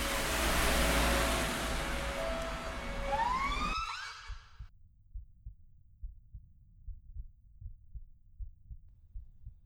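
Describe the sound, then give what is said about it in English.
Loud wailing sirens sweep upward in pitch over a dense roaring wash, then cut off abruptly after about four seconds, leaving a slow, steady, low thumping like a heartbeat. “Lights close. Sirens close. Heavy boots. Close.”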